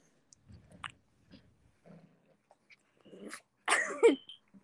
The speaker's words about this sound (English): My dog is still biting me!